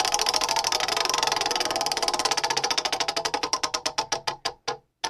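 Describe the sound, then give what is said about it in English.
A scenario wheel spins with a fast run of loud clicks that gradually slow and spread apart until the wheel ticks to a stop, with no voices. “So let's spin that scenario wheel.”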